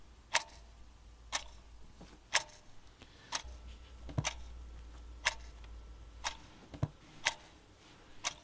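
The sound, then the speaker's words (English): A clock ticks steadily, sharp clicks about once per second over a low hum, with no voices, the room otherwise quiet. “I decided that there was a dark majesty and mystery to a journey to find God, rather than merely an obedient sitting silently and respectfully in meeting halls as clocks ticked audibly while we waited for the rapture.”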